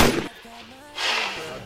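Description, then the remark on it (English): Two loud, noisy bursts like sound-effect gunshots, one right at the start and another about a second later, with a brief tonal, voice-like hum between them. “Gunshots. Gunshots.”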